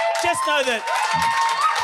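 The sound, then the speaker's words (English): A live audience claps and cheers for a couple of seconds for the speaker's girlfriend, who is in the audience, a dense wash of applause mixed with scattered whoops and raised voices from the crowd. “you can applaud her.”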